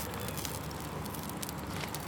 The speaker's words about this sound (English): And you hear them sizzling a little bit. The fire is really hot. Yeah, so I'm just gonna try turning these.